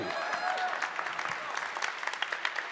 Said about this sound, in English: One person clap.